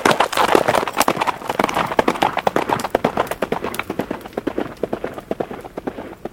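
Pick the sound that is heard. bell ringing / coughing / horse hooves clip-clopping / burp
horse hooves clip-clopping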